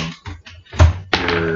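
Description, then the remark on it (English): Dice clatter across a tabletop during a game in a quick series of light taps, ending in a louder tumbling knock and a brief rattle as they settle; the roll comes to 12. “Go ahead and roll.”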